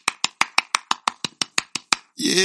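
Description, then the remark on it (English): About eleven sharp, evenly spaced hand claps, added by the host as applause after introducing his guest, in a quick steady rhythm, fairly loud and crisp, followed right after by a voice starting to speak. “Yeah, I added my own claps.”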